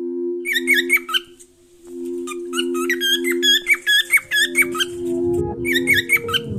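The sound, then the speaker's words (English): A bird named Rigo squawks in loud, shrill bursts of rapid squeaky calls, coming in clustered runs with brief pauses, over a steady low droning hum. “Rigo is a bird.”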